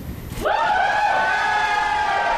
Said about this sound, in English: We may before have won number 3, but we're going to agree with number 2, and we'll get a crowd reaction on this one. Number 2, all people do is drink.